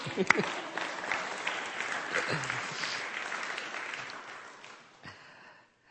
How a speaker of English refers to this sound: And before that, the Phillies win. And let's give that one more cheer.